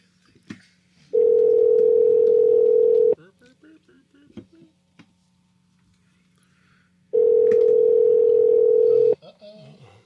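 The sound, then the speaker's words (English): Two long, steady electronic ringback tones of an outgoing phone call placed on the Swoop's World show of Talk Story Radio Network, each about two seconds, separated by a pause, with faint voices murmuring in the gaps between rings. “Ringing is a good sound. One ringy dingy. Two ringy dingies.”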